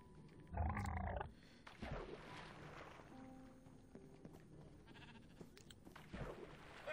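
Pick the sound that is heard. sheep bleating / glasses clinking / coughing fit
sheep bleating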